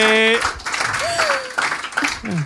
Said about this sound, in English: Round of applause for